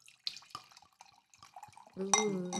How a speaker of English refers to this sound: So I think it's just like a white wine. White wine. So I'm just going to give it a little pour here.